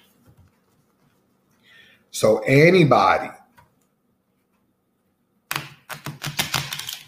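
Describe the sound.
A deck of cards is shuffled, a quick burst of crisp, rapid riffling clicks that follows a short spoken phrase after a pause.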